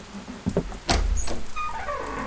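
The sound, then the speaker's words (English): A door opens: a couple of knocks or latch clunks, then a heavy thud followed by a drawn-out, high creaking squeal of old hinges. No one speaks. “Someone's coming to the door.”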